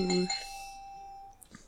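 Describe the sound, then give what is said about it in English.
A single bright bell ding, rung in a trivia game to mark a correct answer, its clear ringing tone sustaining and slowly fading over a second or so, followed by a faint click. “Germany is correct. Ring the bell.”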